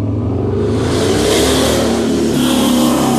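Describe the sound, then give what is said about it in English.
A loud motorcycle engine revs and roars, its throaty rumble swelling and holding steady for a few seconds as it passes, with no voices over it. “I'm sorry, that's what you get for having to do your sermon on the porch to get the motorcycle.”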